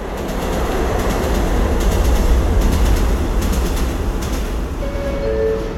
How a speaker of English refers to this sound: Downtown number 6 express train to Brooklyn Bridge City Hall. Purchase will be the next stop. Stand clear of the closing doors.